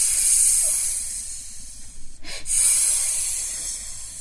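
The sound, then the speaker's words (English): People make a long, steady snake-like hiss, a breathy high sound that continues throughout with a brief gap in the middle, fairly loud, with no talking. “Now, can we hiss like a snake?”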